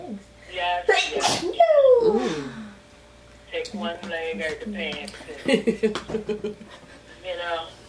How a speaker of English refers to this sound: Bless you.